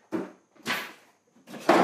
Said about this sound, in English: Alright, he's trying to get the door.